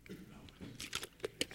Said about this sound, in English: All right, I'm going to take a little sip here real quick.